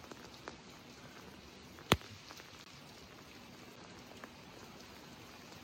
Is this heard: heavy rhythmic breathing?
no